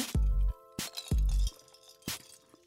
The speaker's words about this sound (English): I'm going to take a little sip in preparation. Yeah, these cups are loud.